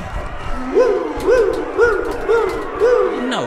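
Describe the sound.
A voice imitates an alarm for a pig alert with five quick, evenly spaced wailing tones, each rising then falling in pitch like a small siren, repeated in a steady rhythm at moderate loudness.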